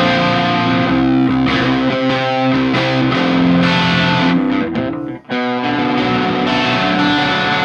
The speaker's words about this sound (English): But this is a really cool pedal. I actually use this a lot on the forthcoming album. As you know, it's kind of a lighter distortion.